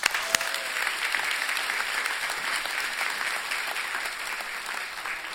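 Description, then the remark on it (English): Sustained applause from a large audience welcoming a pastor to speak, a dense, steady wash of clapping that holds at an even level for several seconds with no speech over it. “Would you guys welcome with me, warm applause”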